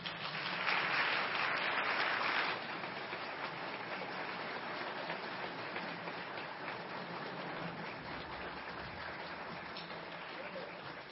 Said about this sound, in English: If you want to give them just a round of applause there.